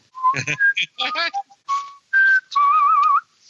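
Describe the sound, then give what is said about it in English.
A person whistles the Jeopardy waiting tune in quick clear phrases that end on a long wavering note, with a few brief mumbled vocal sounds mixed in. “I should be whistling the Jeopardy tune.”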